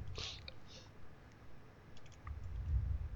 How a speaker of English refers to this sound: Are you typing?